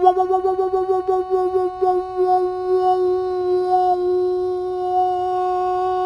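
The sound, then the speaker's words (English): A sustained plucked guitar tone wavers with a rapid, pulsing beat that slows and fades out as the string comes into tune, leaving a steady, clear ringing note. “And that's when your guitar, your string's in tune.”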